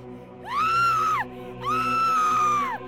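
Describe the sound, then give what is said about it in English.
A wretched, shrill screech rings out twice on a street, each cry held for nearly a second with a rising then falling pitch, loud, separated by a brief pause, with no talking. “No sooner had my feet hit the pavement than a wretched screech was loosed.”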